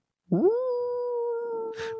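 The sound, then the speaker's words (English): A single long wolf howl rises quickly and then holds a steady, clear tone for nearly two seconds. A brief burst of hiss or a clap-like noise sounds near the end. “Wolf!”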